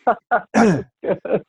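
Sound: cough or throat clearing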